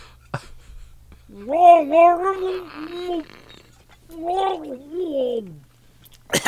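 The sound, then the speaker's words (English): A voice tries to talk while drinking a glass of water, producing warbling, bubbly gargled vocal sounds in two bursts with a short pause between, no clear words coming through. “As I talk while I drink a glass of water.”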